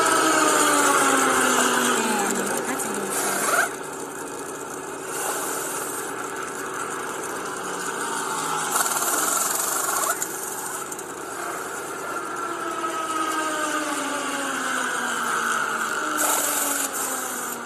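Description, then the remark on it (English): A race car engine revs hard and steadily for an extended stretch, its pitch rising and falling, with harsh rasping bursts like tires spinning against pavement during a burnout. “That was like a burnout at the end.”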